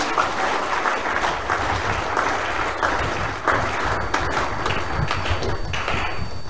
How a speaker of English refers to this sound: Clap for the Lord, somebody.